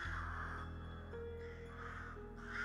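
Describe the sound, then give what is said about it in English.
Ravens in trees caw in rough, overlapping bursts that rise and fall over a steady low hum. No one speaks; the croaking calls continue throughout at a moderate level. “The sound of their footsteps in the snow, masked by the cawing laughter of the remaining ravens in the trees.”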